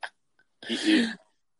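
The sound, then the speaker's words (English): A single loud sneeze: a quick sharp intake, a short pause, then a forceful hissy blast lasting about half a second before trailing off into silence. “Just bless you.”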